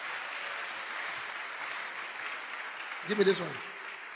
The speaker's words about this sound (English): Stand to your feet and clap your hands for the Lord.